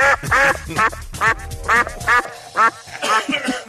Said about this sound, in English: Makes her viola sound like a Drake, Mallard duck.